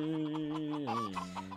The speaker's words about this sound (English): Yeah. So that's a rambling chicken.